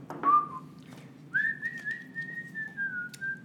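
A person whistles a tune close by: a short opening note, a pause, then a long sustained whistled line that wavers slightly in pitch, over a low background murmur.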